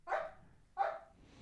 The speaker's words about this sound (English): This dog is losing its mind.